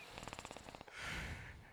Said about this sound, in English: Don't fart again. That's his asshole breathing into the microphone.